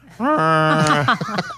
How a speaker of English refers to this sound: do you actually have cows in your living room? Is that it? I'm currently in the barn.